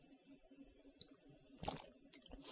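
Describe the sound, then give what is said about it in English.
Quiet sipping of water: a few soft wet slurps and liquid sounds around the middle and end, with a faint background hum and no talking. “Let me take a sip of water real quick before that happens again.”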